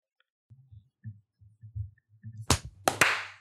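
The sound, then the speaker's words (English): Three sharp, bright hand claps, made to sync a recording, ring out in quick succession after a stretch of low, soft thumping; the final clap trails off into a brief hissy wash. “Yep, let's clap at 32.”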